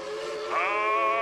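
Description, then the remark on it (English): A steady, tonal train whistle sound effect blows once, loud, rising slightly in pitch partway through and holding for just over a second with no voices. “I'm on that hype train. I am on that hype train.”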